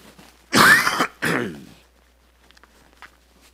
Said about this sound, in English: And I'm going to have to cough a little bit.